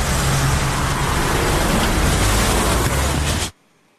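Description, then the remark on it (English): Around midday, a car races away from a police officer in a high-speed chase, with the officer chasing it. Its loud, steady roar and rushing road noise fill about three and a half seconds before cutting off abruptly. No voices are heard. “She made a run for it, and there's the officer chasing her. It became a high-speed chase, my friends.”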